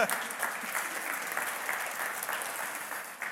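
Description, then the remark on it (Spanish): An audience applauds itself for sitting through a recited creed, a steady, dense wash of many hands clapping at a fairly loud, even level for a few seconds without pause. “Dense un aplauso por soportar eso.”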